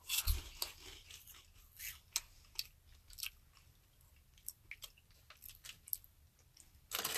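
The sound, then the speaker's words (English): Crunching and chewing of a peanut snack from Israel, with a steady run of irregular, crisp crunches over several seconds and a louder burst at the end. No one speaks. “It basically tastes like a lighter version of Captain Crunch, but with...”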